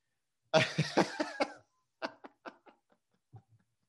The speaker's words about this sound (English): I'm fucking sick. I'm coughing.